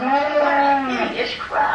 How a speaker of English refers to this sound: Oh, look, a cow. A cow. Let's have some beef.